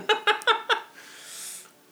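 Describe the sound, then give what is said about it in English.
Four quick, high meows from a cat named Gary in a rapid rhythm, fairly loud, followed by a soft breathy hiss that fades out. “Yep, Gary meows.”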